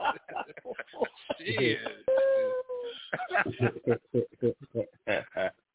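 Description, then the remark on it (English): A small dog lets out a single drawn-out, high whimper lasting under a second, surrounded by fast overlapping talking before and after. “Go ahead, little dog.”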